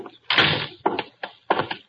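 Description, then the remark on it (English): A door is opened to let in a visitor: a longer rattling scrape followed by three short, sharp clunks of the latch and frame, with no voices. “I'm already on my way to the door.”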